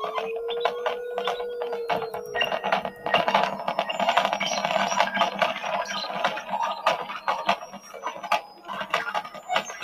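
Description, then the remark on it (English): A Grandmother synthesizer played through spring reverb: a held mid tone bends gently at first, then gives way to a dense wash of metallic clicks, ticks and splashy reverberant crackle, steady and fairly loud, with no voices. “Now you hear the grandmother coming in the spring reverb.”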